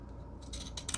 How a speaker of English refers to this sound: Okay, I have this pinking scissor that's a little smaller pinker, and I think it might work well for the edges of a stamp, just to make that easy.